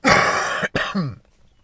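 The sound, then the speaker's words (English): A harsh, raspy cough from smoking a bong, a long rough burst into the mic followed by a brief gap and a second shorter hacking cough that trails off into quiet. “See that cough right there?”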